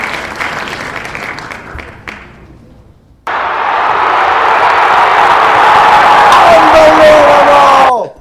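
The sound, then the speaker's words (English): A World Rugby Cup stadium crowd: scattered applause fades out, then a sudden, loud, sustained roar of cheering swells, with whistles and horn-like tones near the end before it cuts off abruptly. “That's World Rugby Cup crowd.”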